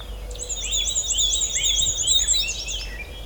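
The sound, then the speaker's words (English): A black-and-white warbler sings a thin, high-pitched warble in a swampy area, a steady run of quick squeaky repeated notes lasting throughout, over a soft background hiss, with no voices. “Very thin warble. Thin and high pitched.”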